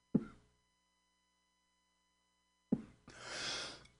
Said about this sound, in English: Let me catch that cough.